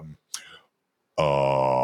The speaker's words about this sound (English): Anyway, headline number one. Let me clear my throat so I can get this right.